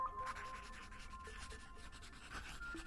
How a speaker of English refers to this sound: She picks up a pencil and begins to write.